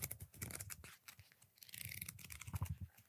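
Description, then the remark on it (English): Crisp paper rustling and crinkling as magazine pages are turned and handled, with irregular scratchy bursts and soft thumps over about three seconds, no voices. “Let me see if I can touch people's ears with the pages of Singletrack then.”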